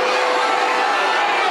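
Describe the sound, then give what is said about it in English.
A large stadium crowd at an Arizona State game jeers the umpire's foul-ball call in a dense, continuous roar of many voices, loud and sustained without a break, with no single voice standing out from the mass. “And the crowd letting her have it.”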